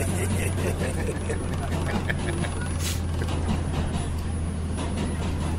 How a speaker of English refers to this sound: Podcasting from a New York City subway while being manhandled by his co-host and humiliated friend.